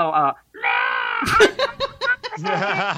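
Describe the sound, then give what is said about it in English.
A voice imitates a baby cuckoo's call with two high, reedy, sustained squeaks, then breaks into choppy bursts of laughter and chatter. “You really do sound like a bird, actually.”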